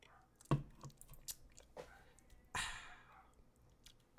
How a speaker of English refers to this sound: Take a sip.